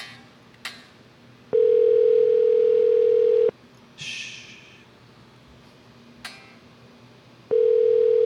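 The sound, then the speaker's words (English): A ringing tone on a phone line: a steady, loud electronic tone sounds for about two seconds, pauses, then starts again, with faint clicks and a brief rustle in the quiet gap. “Pick up the phone. Answer the phone. When it rings, it's your job to do your thing, and you answer it too.”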